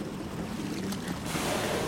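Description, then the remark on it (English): A boat motors across open water where a river meets the sea, its steady low rumble blending with a broad wash of waves and wind noise, continuous throughout, with no voices. “Also, one of the cool instruments this boat has on it is called a hydrophone.”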